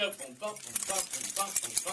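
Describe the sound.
Many sets of keys held by a group of people jingle and rattle together in a bright, continuous metallic shimmer, loud, with murmuring voices underneath.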